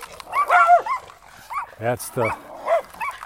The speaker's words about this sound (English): That dog has a lion's voice. It's so cool. Like that. It's a lion. Love that dog. He's behind the fence, so that's a good thing. And he's breathing heavy.